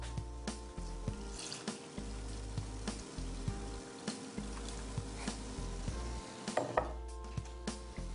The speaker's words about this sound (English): So now that that's gone, I'm gonna go ahead and add in my 2 cups of milk.